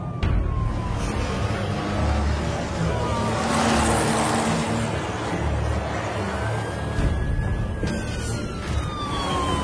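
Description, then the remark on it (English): A police traffic patrol car's siren wails in slow rising and falling sweeps over a loud, continuous roar of racing engines and rushing road noise as it chases a speeding 1926 Bentley doing 110 just east of Slough. “Just need to deal with the traffic patrol on my tail.”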